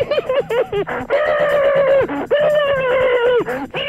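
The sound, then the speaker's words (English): A voice imitating chipmunk noises: a few quick squeaky chirps, then two long, loud, high-pitched squealing notes that waver and bend in pitch, with no other talking. “Knock off the goddamn chipmunk noises, you bumbling fucking fucknard.”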